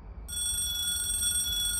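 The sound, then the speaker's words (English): A telephone rings with a steady, bright electronic tone that starts abruptly a moment in and holds without pause, clear over a low background hum. “The phone's ringing.”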